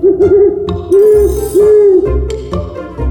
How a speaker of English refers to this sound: They journeyed through the tall, whispering trees and came across a wise old owl named Oliver.